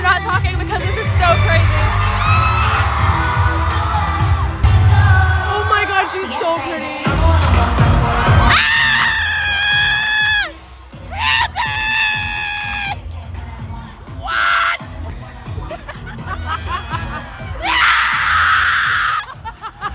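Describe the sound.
Loud, shrill, piercing screaming and shouting in repeated bursts, one or a few voices imitating the frenzied cheering of a crowd at a K-pop concert in a screaming competition, with brief gaps between the longest high-pitched shrieks.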